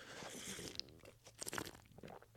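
Crunchy chewing, with irregular bites and crackling munches over a couple of seconds, ending in a sharp, loud crunch. No one speaks.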